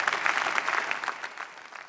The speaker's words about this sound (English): In fact, if you are clapping, clap better.